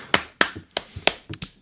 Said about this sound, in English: Give yourself the applause. You got to.